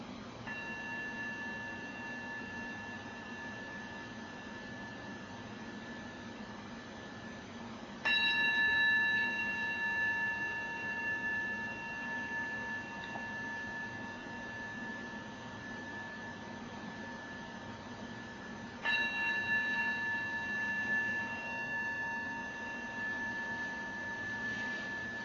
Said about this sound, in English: And we'll practice receiving the 3 rings of the bell.